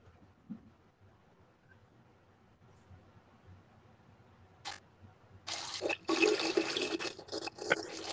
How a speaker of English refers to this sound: I knew you were frying chicken. I knew you were doing something.